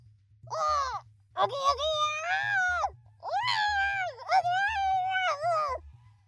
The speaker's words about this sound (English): Then, they heard something outside of their cell other than an earthquake. A soft hissing. Before either of them could comment, it was followed by a wailing, high-pitched scream.